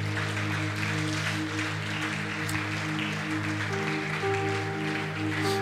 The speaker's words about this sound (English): Anybody feel that way today? Clap your hands and thank God for it.